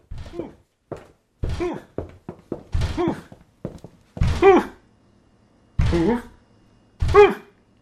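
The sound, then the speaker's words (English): Repeated muffled thumps against a front door, coming from behind it, about a dozen in an irregular rhythm: quick knocks at first, then heavier, slower blows mixed with low, groaning, voice-like tones, separated by short silences. “It almost sounds like someone is bumping his head over and over against the door, but also saying the word hoof.”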